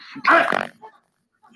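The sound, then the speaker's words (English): A dog lets out one loud bark, then a faint trailing yelp, followed by near silence with a little background noise at the end. “The dog's barking.”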